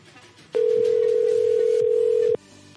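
A telephone dial tone as someone calls a man back: one loud, steady, unbroken hum lasting nearly two seconds, then cutting off abruptly, with faint background noise before and after.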